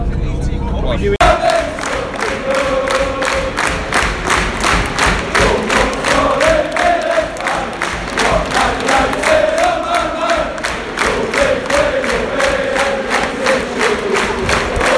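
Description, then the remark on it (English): A large crowd of football fans chants loudly and continuously in unison, a rhythmic wall of voices with steady clapping or stamping beats running through it after a brief opening moment, as fans leave the ground after a Sunderland versus United match that United won 3-0. “Simon Stadium alive, Sunderland 0, United 3, just on the way out of the ground now, and pretty routine day for United.”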